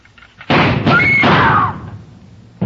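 Several loud, booming gunshots fire in quick succession, their echoes ringing and fading before another sharp blast cuts in at the very end. No voices are heard.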